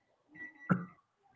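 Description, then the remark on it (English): A stove's electronic beep sounds as one steady, fairly high tone lasting under a second, with a short thump in the middle. Nobody speaks. “But you got it beeping, girl.”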